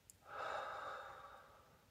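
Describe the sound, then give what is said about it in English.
A single slow, steady, soft breath, in through the nose and out through the mouth, an airy rush that swells quickly and then fades gradually over a couple of seconds. No one speaks. “Begin by breathing in through the nose and out through the mouth.”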